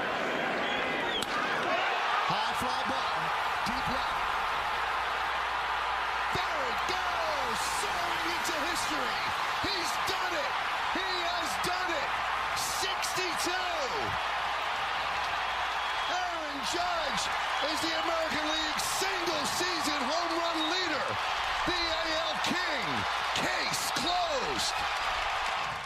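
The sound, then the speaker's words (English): A huge stadium crowd in Texas roars loudly and continuously after Aaron Judge's record-breaking home run, a dense wash of cheering with sharp claps, shouts and whistles popping out of the din. “The crowd was exploding there in Texas.”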